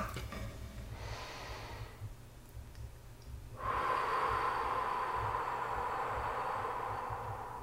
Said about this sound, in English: All right, let's take a couple nice deep breaths in through the nose and out through the mouth. Okay, nice deep breaths in your belly, all right? Relaxing your shoulders.